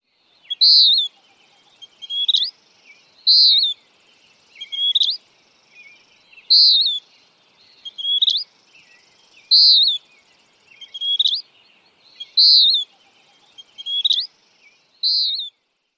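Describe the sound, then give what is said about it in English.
Western Wood-Pewee calls repeat steadily, about eleven clear, burry whistled notes spaced roughly a second and a half apart, loud, with no other sounds between them. “Again, the Western Wood Pewee.”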